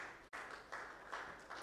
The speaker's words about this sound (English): Clap for the Holy Spirit.